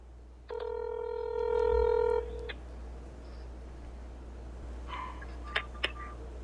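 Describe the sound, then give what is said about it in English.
A telephone call tone from a phone call being placed, played into a microphone through a small speaker, sounds for about two seconds, steady and buzzy, followed by quiet line noise and a few faint clicks. “So here's the phone call I did today.”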